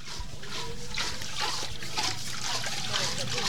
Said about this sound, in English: In the tiny jungle village of Veragala in central Sri Lanka, half a dozen locals gather at the communal water well. Women chat as they take turns pumping the rusty metal handle to bring water to the surface